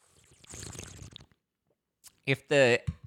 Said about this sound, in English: If the drinking and the slurping annoys you, I know it kind of annoys me too. Please let me know because I don't want to be that.